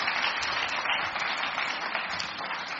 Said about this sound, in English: Thank you, boys. Round of applause for the proud food.